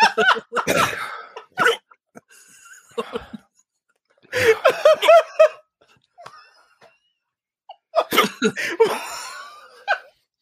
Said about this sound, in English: It's just the sound of hiccups.